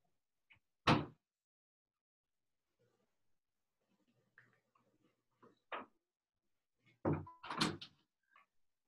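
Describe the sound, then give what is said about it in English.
A front door thuds open near the start as someone is let in, followed by quiet shuffling and faint clicks, then a louder cluster of bangs and rattles as the front door is handled and shut again. “I do have to go and let someone in my front door quickly.”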